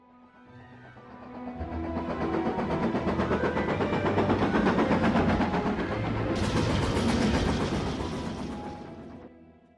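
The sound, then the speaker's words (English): A train runs on rails, swelling in to a loud, steady rumble with a rapid rhythmic clatter; a bright hiss joins near the end before it eases off. No one speaks. “So let's just dive into our Hogwarts Express and see what Harry and Ron are up to.”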